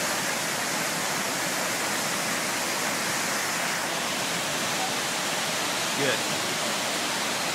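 A waterfall pours steadily into a pool, a dense, unbroken roar of rushing water filling the whole clip at a constant level with no pauses or other sounds.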